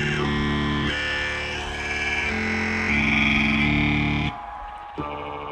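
The opening of an electronic duo's live Coachella set: loud layered vocoded robotic vocals, a mashup of the words human and robot chopped into stuttering, repeating chunks over thick synth tones, shifting every second or so before dropping away abruptly near the end.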